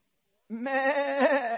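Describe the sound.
A crowd of voices imitates sheep, joining in a single sustained, wavering "baa" bleat that starts abruptly after a short silence and holds steady and loud.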